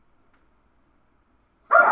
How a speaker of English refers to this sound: These dogs will fucking bark at me for no reason. They're the worst.